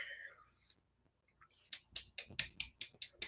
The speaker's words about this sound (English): I'm grateful. Yeah, that's a little clap I'm giving. I'm grateful.